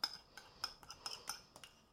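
A utensil clinks and scrapes repeatedly against a bowl in a quick, uneven rhythm as potato salad dressing with pepper and ground sea salt is stirred, fairly quiet, with no voices.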